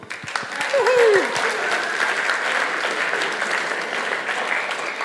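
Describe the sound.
A crowd claps steadily for three volunteers, a dense, even roar of many hands that holds at a fairly loud level throughout, with a voice briefly calling out over it near the start.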